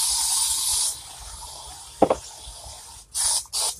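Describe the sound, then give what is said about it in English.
An aerosol can sprays in three bursts: a long hiss of about a second, a short pause, then two quick spurts close together near the end, loud with no talking. “I'm spraying again.”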